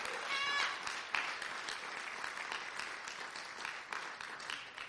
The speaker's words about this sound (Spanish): dele una ofrenda de palmas fuerte al Señor.